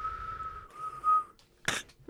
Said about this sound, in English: This is our wiggling. I'm wiggling. Our whistling. Wiggle. Our whistling segment.